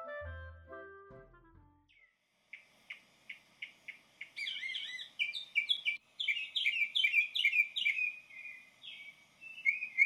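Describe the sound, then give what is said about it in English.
A mockingbird sings clear, first a steady run of repeated chirps, then quicker, shifting phrases of varied whistles and trills, each repeated a few times in succession, its song mimicking other birds. “You're listening to the sounds of a mockingbird, a creature whose song involves mimicking other birds, animals, insects, and even modern technologies like car alarms.”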